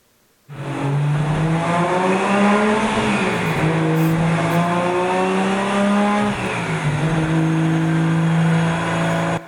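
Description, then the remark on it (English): A loud car engine revs steadily for about nine seconds, its pitch climbing and dropping a couple of times as if shifting or easing off the throttle, with no talking. “Some of you hear this sound and you're like, oh, I know that sound. That's an engine. That's that jerk that just drives down my road every day.”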